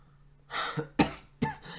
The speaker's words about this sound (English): if you put like a little bit of pressure on your throat at a certain spot, it tickles your throat and it kind of like makes you want to cough.